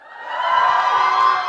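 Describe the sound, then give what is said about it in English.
A church audience, the people from Metro, erupts in cheers and shouts, a dense, loud wash of voices swelling in the first half-second and holding steady with scattered higher whoops on top. “Let's hear it from Metro.”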